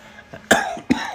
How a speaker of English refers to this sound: Which one of y'all was just coughing? Me.